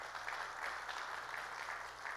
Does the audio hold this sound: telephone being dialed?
no